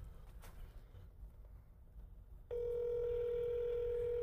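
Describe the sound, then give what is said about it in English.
A low background rumble, then a steady telephone tone switches on and holds loud and continuous to the end, a line tone heard while calling a house number straight from a phone. “No, we're just calling straight from the phone.”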